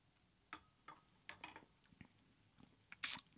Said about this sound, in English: All right. Let me have an official sip with those blackberries in there.